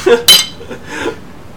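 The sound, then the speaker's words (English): Beer bottles knock together in a quick toast, one bright, sharp clink, followed by a faint murmur and low background noise. “Cheers, bro.”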